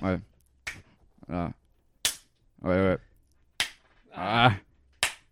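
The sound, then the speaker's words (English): Four sharp, loud hand claps ring out one at a time, roughly a second and a half apart, as someone tries to get a really loud, satisfying clap, with short bursts of a voice between them. “I ever try to get that really satisfying clap”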